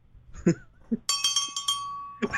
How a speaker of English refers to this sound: Yeah, there's the bell.